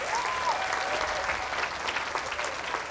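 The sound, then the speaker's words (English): A crowd in Scotland applauds the child volunteers steadily, dense clapping holding an even loudness throughout, with a faint whistle-like tone drifting through the start. “Let's have a round of applause for our volunteers.”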